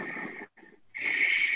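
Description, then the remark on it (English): Audible breathing through the nose with the mouth closed, fairly loud: a hissing breath, a brief pause and short puff, then a longer, stronger airy breath with no talking. “Just by breathing with our mouth closed and where you hear it, just that.”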